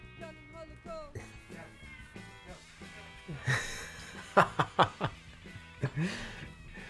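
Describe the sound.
A cat meows loudly and insistently nearby, several drawn-out, almost child-like cries in quick succession, while people laugh and talk in the background.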